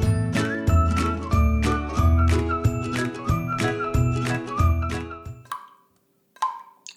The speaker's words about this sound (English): That's a dripping tap you can hear. And it's dripping in my kitchen sink, which I think is a bit annoying.